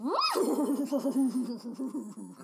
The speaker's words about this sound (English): Doesn't sound like that horse is saying anything in pure English.